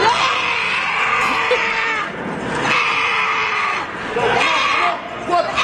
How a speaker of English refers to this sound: I really don't know how to introduce this video or sound other than it's a granny who's a competitive weightlifter. In this scene, she's doing squats and she screams to psych herself up for the lift.